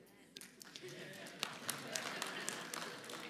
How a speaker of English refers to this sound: all of you who just applauded are going to have to get over it.